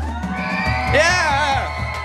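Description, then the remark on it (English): A crowd of children screeching and yelling together on cue, making noise for their team at a game, in a loud, sustained burst of high-pitched cheering, with voices overlapping for about two seconds. “That don't sound like no roar, that sound like a screech, but it's all right, it's all right.”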